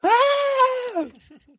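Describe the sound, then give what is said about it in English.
A person lets out a single loud, high-pitched girlish scream, held for about a second before dropping off into quiet. The voice is strong, with no other talk. “It's a very girlish scream.”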